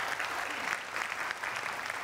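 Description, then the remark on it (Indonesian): An audience at an evening event claps steadily for politician Mutia Hafid, a dense, even wash of applause that holds at a moderate level for a couple of seconds with no voices on top. “Kita kasih tepuk tangan ke Mutia.”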